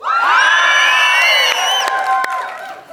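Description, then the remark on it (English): An audience on one side of the room at Bethlehem Baptist cheers loudly all at once after a 3, 2, 1 countdown, a dense wash of shouting and high whoops that holds strong for about two seconds before gradually tapering off. “I want to hear a bit of a cheer from the side.”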